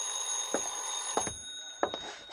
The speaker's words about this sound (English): I was just tying my tie when the phone rang.